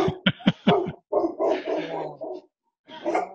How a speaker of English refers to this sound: When the spirits come to visit, the dogs go wild. Yeah, well, we kicked ours out, but they barked in the background for a little bit too.